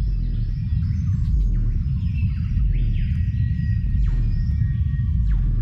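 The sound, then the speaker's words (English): A cassowary's deep, very low-pitched rumbling call drones steadily throughout, felt more than heard, while fainter chirps and sweeping calls from other birds drift above it. “It's the lowest pitched bird call in the world, and it's barely audible to the human ear.”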